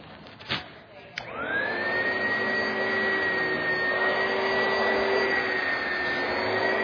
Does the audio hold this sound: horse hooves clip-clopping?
no